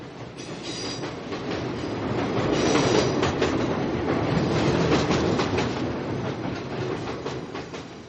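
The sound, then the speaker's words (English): A Chicago Brown Line commuter train rolls steadily along the tracks, with rhythmic clacking over rail joints and a broad rumbling roar that swells in the middle and stays loud throughout, with no voices. “When I mentioned that I usually ride the Brown Line or the train around the city, riding the Brown Line sounds gross.”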